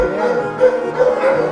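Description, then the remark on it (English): A chorus of many dogs barking and yelping at once in the yard of an animal shelter, a dense, continuous racket with a few sharper barks standing out, fairly loud. “Dogs, you want to see dogs? Dogs, let's go to see dogs.”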